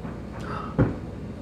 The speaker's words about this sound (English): So you crack the door and let Scout go through.